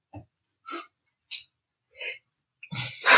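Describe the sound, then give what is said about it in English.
Four short, sharp catching breaths in a steady rhythm, like someone about to sneeze, then a louder, breathy burst at the end that never quite becomes a full sneeze. “You gonna sneeze? Almost.”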